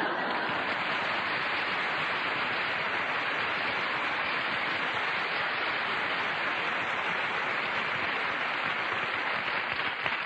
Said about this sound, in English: All that applause belongs to Ogden Nash.